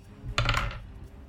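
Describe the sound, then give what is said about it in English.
A quick clatter of dice tumbling across a hard tabletop for an attack roll in a tabletop game, a burst of sharp little clicks and rattles lasting about half a second before settling into quiet; with a plus 8 bonus the roll totals 13. “Okay, it wasn't a great roll, but it's plus 8.”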